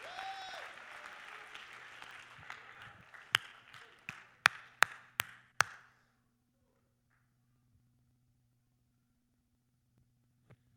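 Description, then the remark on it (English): An audience claps their hands to thank the Lord, in dense, steady applause that thins into a handful of sharp, separate claps before stopping, leaving several seconds of near silence with a low hum. “Somebody clap your hands and let's thank the Lord for every good thing that God is doing.”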